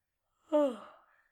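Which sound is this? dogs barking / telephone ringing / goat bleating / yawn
yawn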